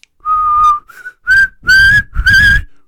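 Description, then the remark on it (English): A person whistles a short tune: about five clear notes, a long held one, a quick blip, then three rising, sustained notes with a breathy edge. No talking. “The guy goes, "Whoops, too bad," and like he's whistling while he's trying to find a file on the submarine.”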